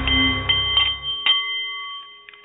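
A Nepalese meditation bowl chimes, its bright, shimmering overtones ringing on and slowly fading, with a few soft metallic touches along the way and no talking.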